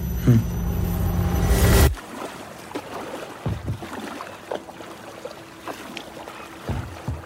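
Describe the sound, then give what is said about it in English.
A loud droning roar cuts off abruptly, leaving quiet water where a small boat is paddled along, with soft, irregular splashes from individual strokes dipping into the water. “It's a long way to paddle.”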